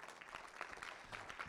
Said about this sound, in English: Let's give the Lord a clap offering today.